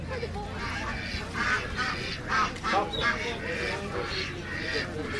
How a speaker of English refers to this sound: African geese. What makes a goose African as opposed to like a regular or garden goose? That's just a breed.